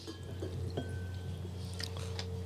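Tequila is poured steadily into a glass, a continuous gurgling trickle with a few small splashes and clinks, no voices.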